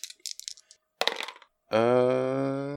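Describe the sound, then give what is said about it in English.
Dice rolled in a game clatter across a hard table and land on a 3: a quick run of small clicks, then a brief rattling burst, followed by a loud, steady electronic buzzing tone. No one speaks. “Yeah, so those dice work. I got a 3.”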